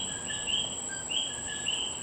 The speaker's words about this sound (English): This request comes from Alex at the Stateville Correctional Center, who wanted to hear the sound of the coqui frog in Puerto Rico.